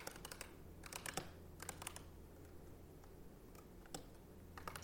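Quick bursts of typing on a computer keyboard, clustered keystrokes clicking in uneven rhythm with short pauses between flurries, moderately quiet over a low steady hum.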